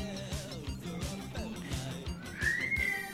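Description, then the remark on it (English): A baby lets out a thin, piercing shriek that rises and holds near the end, after some wavering vocal sounds, all over a steady low droning rumble of a plane. “Hang on, we have both a plane and a shrieking baby, so I'm just going to wait for the noise”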